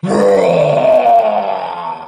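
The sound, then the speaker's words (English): A person imitates Godzilla's roar with a single sustained, loud, gravelly growl of about two seconds, low and rough throughout, tapering off slightly at the end. “The roar was decent, I'd say.”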